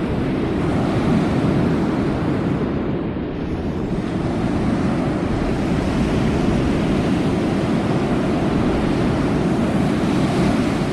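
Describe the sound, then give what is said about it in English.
Steady, roaring ocean surf fills the scene, a dense continuous wash of breaking waves with gusty wind noise over it, loud, with no voices. “The sound of the ocean is very strong here.”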